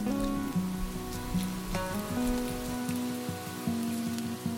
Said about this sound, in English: You feel a raindrop on your hand. It starts to rain.